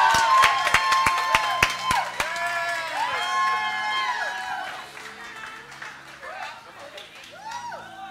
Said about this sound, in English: Come on, we're cheering her on. We're thanking God for what he's doing.